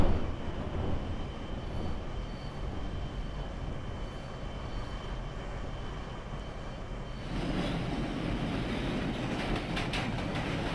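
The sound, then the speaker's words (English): A train rolls steadily along the tracks with a deep, continuous rumble that grows brighter and louder partway through, joined by rhythmic rattling and clatter of the cars. No one speaks. “Except I still don't hear the railroad.”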